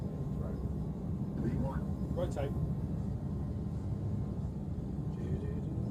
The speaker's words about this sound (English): No, little aeroplane, there's plenty of runway left.